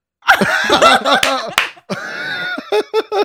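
A quick, irregular burst of sharp hand claps, loud and snappy, mixed with bubbly laughter and vocal sounds running underneath and between the hits.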